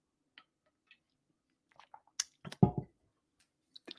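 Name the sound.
sipping water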